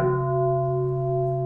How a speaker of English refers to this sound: And what's that thing on by the plant, that big bowl? It's a bell. It's a bell? Yeah. You want to hear it?